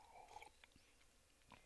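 A faint slurp from a sip of coffee, followed by a few soft mouth and swallowing clicks in an otherwise quiet moment with no talking.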